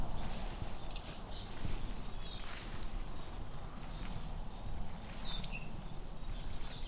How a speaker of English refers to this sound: Another white-throated sparrow call, that little blip. White-throats have a lot of different little calls. There's the seep, there's the blip.